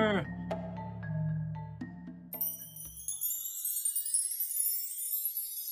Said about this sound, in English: I hear some chimes.